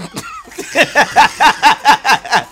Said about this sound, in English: As a chain smoker, I'm hoping this cough doesn't also become chain.